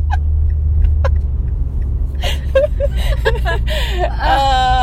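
A steady low engine and road rumble fills a moving car's cabin throughout, with people's voices and laughter breaking in over it during the second half.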